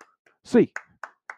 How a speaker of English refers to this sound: And as always, Hands up. Eight clap time. And 1, 2, 3, 4, 5, 6, 7, 8.